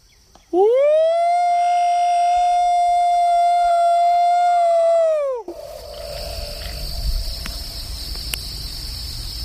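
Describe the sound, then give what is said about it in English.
A person imitates a Bigfoot howl: one loud, sustained, rich-toned call that swoops up, holds steady for about five seconds, then drops off, leaving a quiet background of buzzing insects. “Let me give a Bigfoot howl and let's see if we get a response.”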